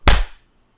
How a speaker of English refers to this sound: We'll do another countdown, and I'm going to do my clap at the end because it creates a nice big waveform for me to look for.